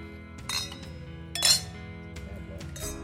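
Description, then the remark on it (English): Wine glasses of sparkling Catawba wine from Ohio clink together a few times in a toast, bright ringing taps around half a second, one and a half, and near the end, over a low steady background hum. “So on that note, cheers.”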